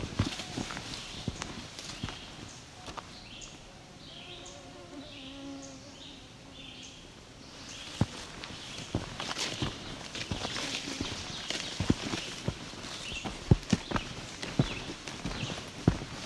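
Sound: ovenbird singing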